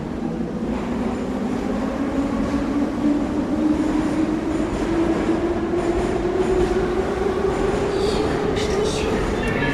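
A Moscow Metro subway train in Moscow, Russia, rumbles loudly and continuously, its motor whine slowly rising in pitch as it picks up speed, with faint clatter and squeal from the wheels throughout.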